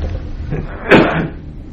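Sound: sneeze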